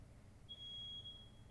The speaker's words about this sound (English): What's up? Well, no, there's a fire alarm going off.